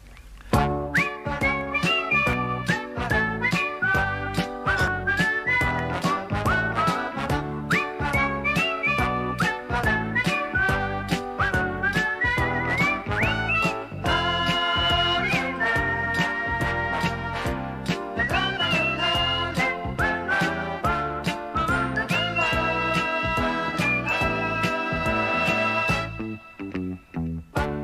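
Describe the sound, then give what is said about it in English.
A whistled tune, played for a name-that-tune quiz, plays over a steady, rhythmic musical backing, loud and continuous for nearly half a minute before cutting off abruptly at the end. “Whistling.”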